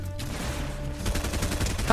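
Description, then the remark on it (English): Rapid bursts of video game gunfire aimed at the player crackle continuously for two seconds, loud, with sharp repeated shots layered over a steady low hum. “Stop. I'm getting shot at.”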